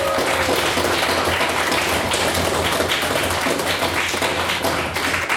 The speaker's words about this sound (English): Can I please get another round of applause for our wonderful speech?